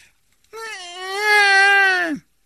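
A baby lets out one long, loud wailing cry lasting under two seconds, high-pitched and steady, swelling in the middle before dropping off sharply at the end. No talking.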